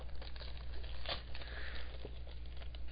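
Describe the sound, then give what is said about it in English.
Papery crinkling and rustling as wrapping paper is handled and pulled open to unwrap a present, with a sharper burst of crackle partway through. No one speaks. “These presents are in really cool wrapping paper and stuff, and they did an awesome job wrapping them.”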